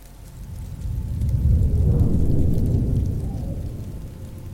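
Steady rain falls with a dense, hissing wash, joined by a low rumbling swell that builds and peaks midway before easing off. No voices are heard.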